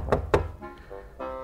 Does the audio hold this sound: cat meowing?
no